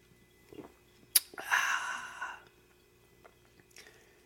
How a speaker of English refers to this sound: But before I do, I'm going to sip on this Voodoo Ranger from New Belgium.